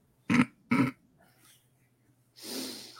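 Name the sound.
dog breathing heavily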